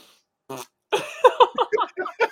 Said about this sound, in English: Now do manual fart. Let's go. Keep going. Coming out.